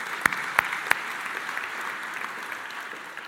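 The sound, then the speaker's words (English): A church audience claps together, steady dense applause with a few sharp louder claps standing out near the start, sustained at moderate level without voices. “Yeah, we can give them a clap.”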